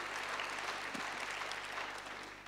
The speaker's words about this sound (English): God has called you. Yeah, come on, give the Lord an applause.